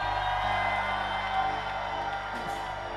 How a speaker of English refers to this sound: Give the Lord a shout and a scream.